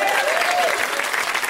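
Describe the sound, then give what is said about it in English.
A comedy show audience claps for a comic in a dense, steady wash of applause that stays loud throughout, with a faint whistle-like tone briefly rising and falling near the start. “Round of applause for that guy.”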